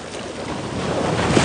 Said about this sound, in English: There's not a lot of waves today, so we can take this gimbal phone out here, get you live from the water. Hear that water. I'm gonna be quiet so you can hear this ocean. That's so good.